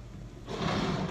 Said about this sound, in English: Door. Oh, this one's having a hard time.